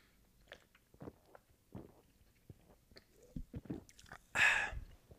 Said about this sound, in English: let me take a sip of this. Sponsor today, Ghost Sour Patch Blue Raz.